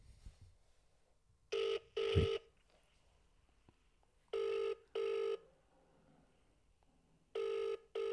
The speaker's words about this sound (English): What about I give Gibby a call on the show?